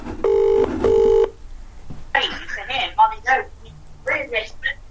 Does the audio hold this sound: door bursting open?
no